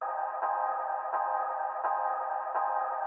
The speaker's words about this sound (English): Now though, a 2-minute quick tip showing a different way of creating the classic pumping effect in Ableton Live. Here I've got the tail end of an FX hit looping to give me a continuous atmospheric sound with a constant level.